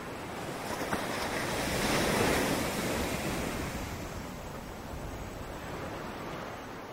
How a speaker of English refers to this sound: The wind is a soothing caress, and still the waves ebb and flow and ebb and flow.